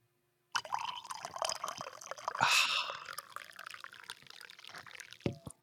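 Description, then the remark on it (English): Morning coffee pours steadily into a cup for about five seconds, a splashy liquid stream that swells midway and ends with a soft clink. No one speaks. “Oh, morning pour.”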